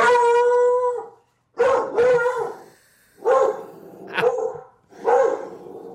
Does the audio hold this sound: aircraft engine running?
no